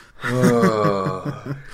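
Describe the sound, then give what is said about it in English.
A single drawn-out, voiced yawn, its pitch wavering before it trails off after about a second and a half, with no talking around it. “Yawn. Okay, yeah. That was real.”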